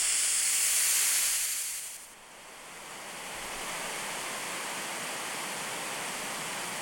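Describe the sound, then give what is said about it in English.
A steady, continuous brown noise from a sleep sound machine, cutting in after a brief bright hiss and then holding as an even, deeper rushing wash. No one speaks. “And then this is brown noise.”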